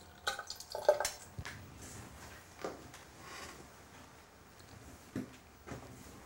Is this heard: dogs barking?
no